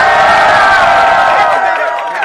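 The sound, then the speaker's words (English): A loud audience screams and cheers all at once to vote for a contestant in a round, a dense wall of high-pitched voices sustained throughout before easing slightly at the end. “Now it's time to choose, so let's hear some screams. If you want Samus to win, let me hear you.”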